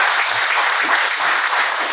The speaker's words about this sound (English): Congratulations. Clap it up. Clap it up.